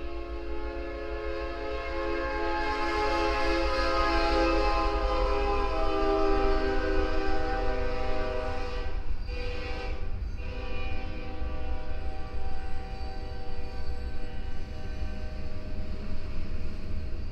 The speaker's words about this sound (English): In the distance, I heard the Iron J train as it began its pass through our sleepy little town.